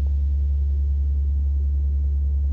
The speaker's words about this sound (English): I was just trying to look up if I could just find 70 hertz to play online